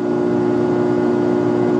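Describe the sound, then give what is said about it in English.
A steady electrical hum from running electric lights of the kind used to grow legal cannabis in Colorado, a constant low buzz with bright tonal harmonics and an even level throughout, with no speech and no change over the short stretch. “It's actually the sound of electric lights.”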